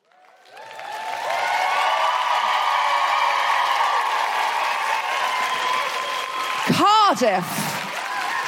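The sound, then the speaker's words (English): An audience claps and cheers steadily to register on a clapometer, swelling quickly into sustained applause that holds loud for several seconds, with a brief whooping rise near the end. “So you clap when you're feeling it.”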